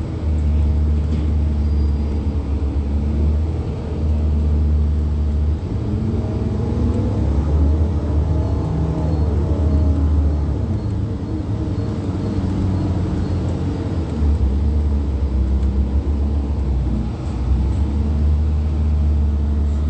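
A steady, loud bus engine rumble fills the ride from inside, low and droning with a faint shifting whine as it accelerates and settles, no voices.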